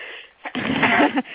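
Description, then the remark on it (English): A single sneeze: a short sharp intake followed by a loud, noisy burst lasting under a second, with no talking over it. “I'm going to sneeze.”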